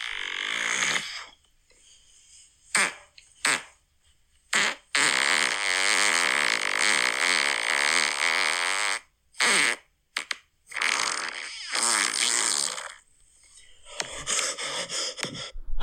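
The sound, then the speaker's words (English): A man makes a series of loud, drawn-out fart sounds, seemingly by blowing against skin, separated by short gasping breaths and brief silences, ending in sputtering bursts. “It sounds like he's doing it like with his mouth on his arm or something.”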